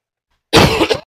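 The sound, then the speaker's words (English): A single loud, harsh cough bursts out, lasting about half a second and trailing off in a rough, throaty rasp, with silence before and after. “Oh, boy, missed that cough button. And it's loud.”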